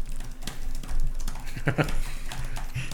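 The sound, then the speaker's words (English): Rapid, uneven clicking of computer keyboard keys, a steady stream of sharp taps running the whole time, moderately loud, with a brief voiced sound partway through. “Everybody does it, but I cannot stand keyboard clicking.”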